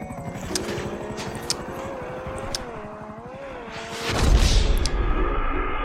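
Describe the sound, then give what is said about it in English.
A video game helicopter flies, droning steadily with a low rhythmic rotor chop and engine whine, swelling into a louder rushing roar near the end. “If this helicopter blows me up with a rocket, I'm going to need to buy a new table.”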